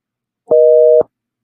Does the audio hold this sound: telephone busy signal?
yes